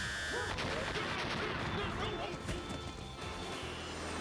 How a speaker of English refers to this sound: Turn cannon, fire.